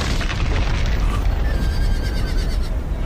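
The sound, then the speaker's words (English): A loud, sustained rumbling crash of an ancient stone bridge collapsing as its keystones are pulled out with horses and ropes fills the whole stretch, while horses whinny faintly through the roar. “Once across, the Irish use horses and ropes to pull keystones from the ancient structure.”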